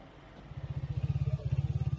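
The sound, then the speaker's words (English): Two motorbikes in Afghanistan, each carrying two armed people, their engines puttering in a low, steady rhythm, starting after a brief quiet moment and growing louder as they approach. No one speaks. “So I only saw two motorbikes, two people on each, armed people.”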